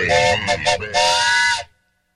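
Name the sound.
train whistle sound effect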